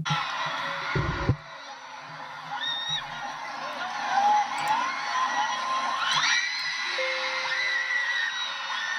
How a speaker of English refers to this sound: Welcome in, everyone, to the Keon Sports Network. Tonight's presentation of high school girls basketball. As you can hear in the background, the fans already filing in. This is going to be a real big game.